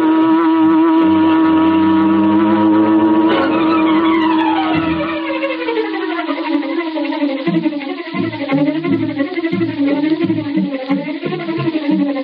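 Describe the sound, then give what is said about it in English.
A car engine roars steadily while tires squeal as Bleeker's car swings into the street and turns toward Schaefer's parking lot, the pitch sweeping and wavering as the vehicle swings around, loud with no voices. “As Bleeker's car swung into the street and turned toward Schaefer's parking lot, a huge, sleek black car started along behind them.”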